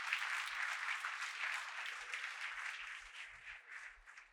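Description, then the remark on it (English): An audience claps together in sustained applause as a hand clap of praise to the Lord, a dense wash of many hands with no pauses, fairly steady in loudness and fading slightly toward the end. “Now put your hands together and give the Lord a hand clap of praise.”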